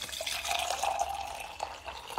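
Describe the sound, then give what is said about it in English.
Boiling hot water pours steadily into a container, a continuous hissy, splashy stream lasting a couple of seconds, with no talking. “See, I thought the hot water, because it's boiling, would have made the cracking noise being poured into anything.”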